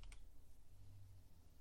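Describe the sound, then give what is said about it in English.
Two quick, sharp clacks of keys on a loud Boba Fett computer keyboard right at the start, followed by a low steady hum with no further typing and no voices. “You got to type quieter.”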